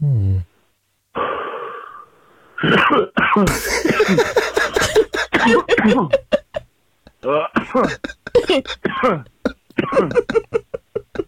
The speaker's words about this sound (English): Sorry, that was a quick post down pen hit. It's not a Rona deal at all. Just a pot cough.